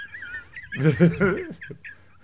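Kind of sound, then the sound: vocal imitation, person imitating a chicken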